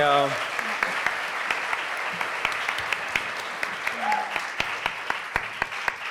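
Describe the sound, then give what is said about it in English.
A crowd applauds all the speakers of a talk on plant-based diets steadily, a dense wash of many hands clapping at an even level throughout, with a few sharper individual claps standing out and a brief voice at the very start. “First, give a round of applause to all the speakers.”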